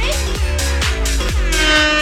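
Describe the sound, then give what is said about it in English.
A loud air horn blares in a rapid series of repeated blasts, brassy, with nobody speaking over it, sounded on the Colleen and Bradley Show to make sure it works. “We're just, you know, making sure our air horn works.”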